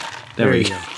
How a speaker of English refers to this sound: There we go. At least get your ice to make a noise.